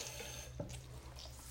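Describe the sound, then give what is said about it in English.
Tap water runs steadily in a soft, even hiss as an orange beauty blender makeup sponge from Walgreens is wetted, with a brief splashy burst partway through and a low hum underneath. No one speaks. “Now I gotta get my beauty blender and wet that shit.”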